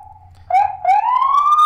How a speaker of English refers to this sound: But why are they doing that? Why don't they just run the siren? Why are they going like whoop, whoop, whoop? I don't know. Why? What's the point?